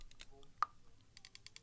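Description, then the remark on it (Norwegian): A person's jaw joint clicks: a few soft clicks, one sharp, distinct pop, then a quick run of small clicks. Faint voices murmur in the background. “Og det er skjeven din som... Det er skjeven min. Klikker?”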